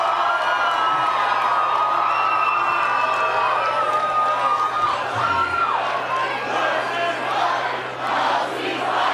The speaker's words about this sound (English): Let's go to Speaker Johnson. Says ceasefire is outrageous, and the crowd chants to no ceasefire. Let's listen to that.